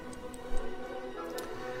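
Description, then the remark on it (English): A countdown clock ticks with a handful of crisp, light clicks spaced a fraction of a second apart, layered over a steady, humming musical bed at a moderate, even level. “That's how big this game is, and it's kind of gone by the wayside for a lot of people with zero on our clock here.”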